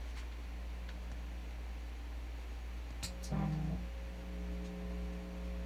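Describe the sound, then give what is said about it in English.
A steady, low electrical hum with constant hiss from a guitar fuzz pedal. Midway, a couple of soft switch clicks sound as the noise gate is turned off, then a buzzier, stronger hum swells in and keeps droning. No one speaks. “Let me turn off the noise gate, and you'll hear it.”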